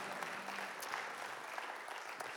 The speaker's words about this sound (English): Let's give these three awesome, handsome people an amazing applause. Thank you so much for everything. Well done.